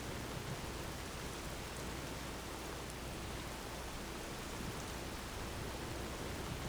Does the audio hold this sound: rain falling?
yes